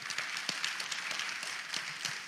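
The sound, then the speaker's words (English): A church crowd claps for the leaders who have just answered questions, a steady, dense wash of applause, many overlapping hand claps blending into a continuous rattle at moderate volume, with no voices. “Let's hear a round of applause for them.”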